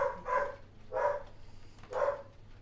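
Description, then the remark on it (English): A dog barks three times with uneven gaps between the barks. The barks are moderately loud, with only faint background noise and no voices. “I hate my dog. Every time.”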